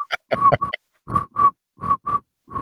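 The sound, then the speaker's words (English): A man with a soundboard imitates cricket chirps with his mouth: rhythmic, croaky bursts grouped in pairs with short pauses between, moderately loud, with no other talking. “The guy with a soundboard is trying to make cricket sounds with his mouth.”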